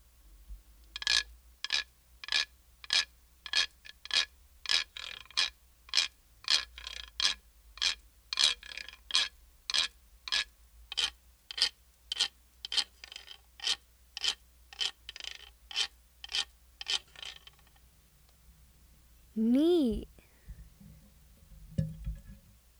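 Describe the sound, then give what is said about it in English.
A wooden deer dance rasp, the instrument the deer musician plays to accompany the deer dancer, is scraped in a steady, even rhythm, about two dozen bright raspy strokes in a row, then the scraping stops and a short rising whistle-like squeal follows. “The rasp is the instrument that the musician, the deer musician, plays to accompany the deer dancer.”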